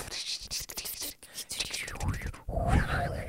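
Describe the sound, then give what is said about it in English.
Voices imitate a skittering black smoke monster with breathy, whispery hissing and scratchy clicks, rising and falling in pitch, growing louder and rougher toward the end. “Great smoke noises by us.”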